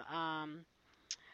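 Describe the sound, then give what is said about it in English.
A single short, crisp computer mouse click, clicking on a support link, sounds shortly after a brief burst of a person's voice fades out. “I click on support.”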